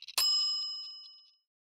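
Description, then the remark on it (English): A kitchen timer bell dings once at the end of a 5-minute timer while SpaghettiOs cook in a pot on the stove: a bright metallic ring that sustains briefly and fades out over about a second, preceded by a few faint clicks, with no talking. “Wait until the bell rings.”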